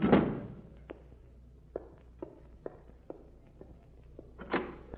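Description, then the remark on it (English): A door shuts with a solid thud, followed by a series of soft, evenly spaced footsteps and another heavier knock near the end. No one speaks. “I know, but I've got to shut that door, those drums.”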